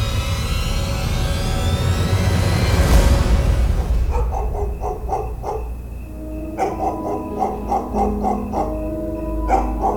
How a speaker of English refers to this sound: Heart beating wildly, he suddenly became aware of the stray dogs barking and jumping excitedly in front of his car.